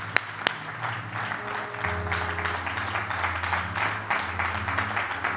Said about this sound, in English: Would you clap your hands and thank God?